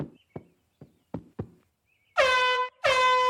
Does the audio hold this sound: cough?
no